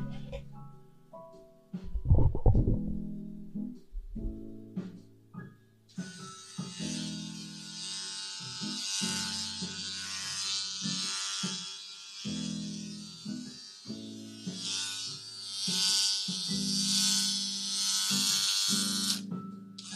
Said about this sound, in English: You know what? We should probably just buzz it all.